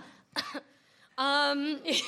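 A brief cough burst, then a longer voiced rasp from the throat, followed by another short hacking sound. Fairly loud, with no clear speech.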